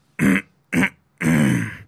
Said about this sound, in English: It's like the internal throat clear, but it's not like he's being quiet or anything, but he keeps his... Anyway, I caught myself doing it today.